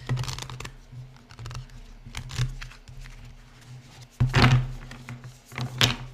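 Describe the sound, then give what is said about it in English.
Crisp papery riffling and slapping of an oracle card deck being shuffled in uneven bursts, with a louder flurry near the end over a faint low hum; no one speaks. “I am not having a great time shuffling. I'm just getting them everywhere.”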